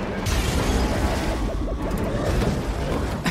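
A sci-fi crash effect for a Predator-style capsule crashing into the jungle: a dense, steady roar of low rumbling and booming, with wavering, sweeping electronic tones warbling through the middle for about three seconds.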